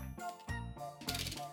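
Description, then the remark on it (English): Playing cards being shuffled: a few quick bursts of crisp, papery clattering and fluttering, repeated in a steady rhythm at a moderate level. “I can't hear apparently, but let's do that good shuffle, which I'm sure you can't.”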